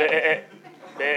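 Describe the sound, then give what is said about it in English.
A sheep bleats twice in countryside fields, a wavering nasal call followed by a brief pause and then a second bleat that is cut off at the end. “As I looked out of the window of the stylophone, I saw luscious countryside, sheep and lambs gambling in the fields.”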